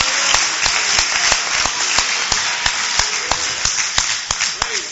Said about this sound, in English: Let's give the Lord a big hand clap. Praise God.